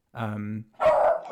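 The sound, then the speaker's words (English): Two loud dog barks in quick succession from a pet dog named Bobby, the first a deep harmonic woof and the second a sharper, higher bark, heard clearly with no one talking over them. “Sorry, this is my dog. He just keeps showing his appreciation.”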